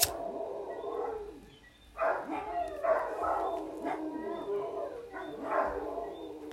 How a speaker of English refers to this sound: and these fucking ass dogs in the background, yes? I think, okay, let's give them 2 seconds.